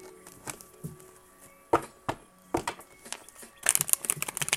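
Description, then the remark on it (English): A deck of tarot cards being shuffled for a reading: scattered crisp slaps and snaps, then a dense, fluttering riffle toward the end. No one speaks, and a faint steady tone hums underneath. “I'm shuffling the cards here, y'all.”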